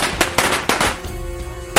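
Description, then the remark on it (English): Sharp homemade firework bangs go off in an irregular burst of about five loud cracks, each with a short crackling tail, and no voices are heard. “So, in most cases, tennis ball bombs and other homemade explosives are found before, during, or right after the fireworks season.”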